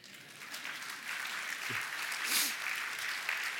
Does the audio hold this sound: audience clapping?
yes